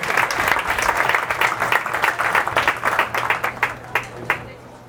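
An audience at an evening event breaks into applause for Gary, dense overlapping clapping that holds steady and then thins out toward the end, a few separate claps still standing out as it fades.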